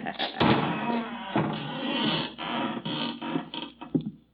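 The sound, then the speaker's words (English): A door is opened: a sharp thud near the start, then several seconds of rough, rattling noise broken by a few smaller knocks and bumps, with no one speaking. “Open the door, Bertie.”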